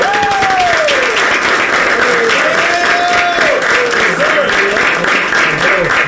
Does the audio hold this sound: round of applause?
yes